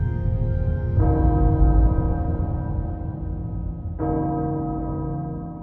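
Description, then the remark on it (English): A large castle bell in the video game Resident Evil Village tolls twice, about three seconds apart, each deep, loud strike ringing out with a long, shimmering resonance that overlaps a low rumbling background. No voices are heard. “The Castle Bell heralds danger.”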